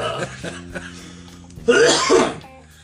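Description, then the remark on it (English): A loud, harsh burst of coughing, two rough hacks in quick succession after a quiet stretch with a low hum, then fading out. “I don't think I can, because I feel my collarbone like from coughing.”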